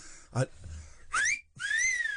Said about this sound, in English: Oh, you can't do a wolf whistle. Huh? You can't wolf whistle at kids. Why? Well, it's a bit inappropriate. No, it's not. I'm reclaiming the wolf whistle.